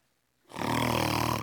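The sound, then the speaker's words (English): A voice imitates a loud, rasping snore of a man lying on the ground, after a brief silence: one long drawn-out inhaled snort with a buzzing, rattling texture, alone. “He starts snoring right next to me on the ground.”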